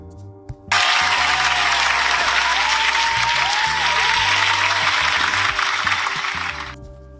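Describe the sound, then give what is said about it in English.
A crowd breaks into loud, steady applause for themselves that starts abruptly and holds for about six seconds of dense, continuous clapping before fading out at the end. “You guys, round of applause for yourselves.”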